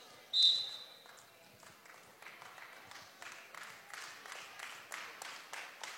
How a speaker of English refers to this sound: Her bench clapping.